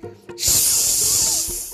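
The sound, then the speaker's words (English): A brief knock is followed by a loud, steady aerosol spray hiss that holds for over a second, bright and airy, before easing off slightly at the end. “What should I spray it on?”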